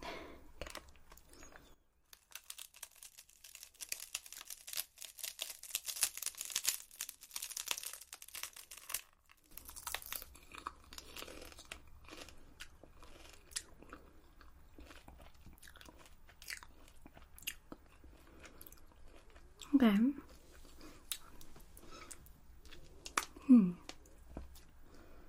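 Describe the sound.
Crinkling of a snack packet gives way to crisp, crunchy bites and steady chewing of a sticky, spicy dried seaweed snack, with a brief spoken word near the start.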